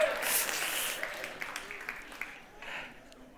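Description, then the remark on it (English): An audience of women breaks into a burst of applause, dense clapping that starts strong and gradually thins to scattered claps over a few seconds, with no one speaking. “Okay, all you ladies, go ahead and applaud.”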